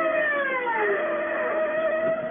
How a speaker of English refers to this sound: The siren gouges a path through the city swiftly like a wild sob swaying across the dark. And you ride it. Inside of you, you're screaming with it.